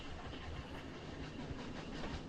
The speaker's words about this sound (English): You three ladies in the coupling, the sound of the train changes just a little bit. The chugga-chugga gets a little bit more... Is the train slowing down?